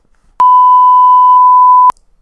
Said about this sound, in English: Actually, can you bleep this?